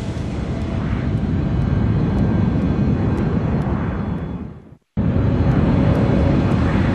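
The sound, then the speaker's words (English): A steady, loud roar of American Airlines Flight 965 in flight toward Bogota, making a left turn off its intended course, its engines droning evenly, broken by a sudden brief silence near the end before the drone resumes. No voices. “Unfortunately, the crew does not know that R stands for another fix that is 132 miles away behind them at about their 7 o'clock position, and that's where the airplane starts to go to.”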